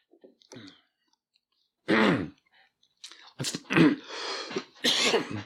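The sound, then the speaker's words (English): Sips and gulps from a Coke come in a few short bursts, followed by breathy, throaty exhales and mouth noises, with no talking. “Let me get another sip off my Coke here.”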